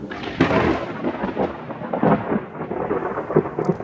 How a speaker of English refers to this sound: Ooh, we got some lightning and storms rolling in.